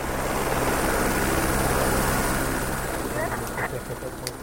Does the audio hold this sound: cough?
no